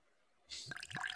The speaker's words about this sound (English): Here, I'll pour you another.